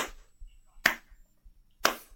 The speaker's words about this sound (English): No, you're faking. There's no way you can be that bad at clapping.